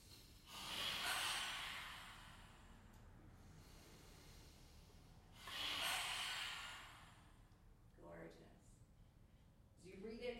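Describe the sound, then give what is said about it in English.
Two long, forceful yoga lion-breath exhales through an open mouth with the tongue stuck out, loud and roughly hissing, spaced a few seconds apart with quiet breathing between, followed by a brief murmur of voice near the end. “We'll breathe in through the nose and we'll breathe out through the mouth, sticking out the tongue, like breathing some fire.”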